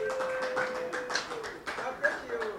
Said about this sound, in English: But I don't know why you are clapping because it is not a good thing.